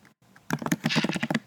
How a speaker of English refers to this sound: Yes, you can hear me typing in the background because I just decided what I was going to say, so I had to put it in the show notes.